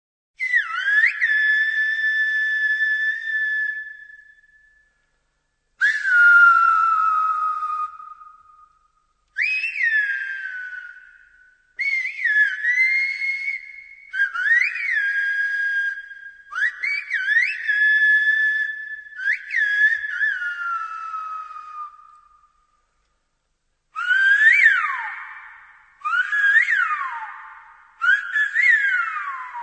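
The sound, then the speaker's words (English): A conversation in Silbo Gomero, the whistled language of the Spanish island of La Gomera, about a party: loud, piercing whistles that rise, fall and glide in pitch, in separate phrases with short pauses and no talking. “But did you know that on the Spanish island of La Gomera, there is an entire whistling language?”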